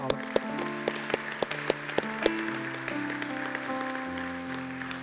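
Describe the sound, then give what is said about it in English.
Scattered, irregular hand claps from an audience ring out over sustained, slowly shifting keyboard chords, with the sharp claps thinning out as the music carries on at a moderate level. “Round of applause.”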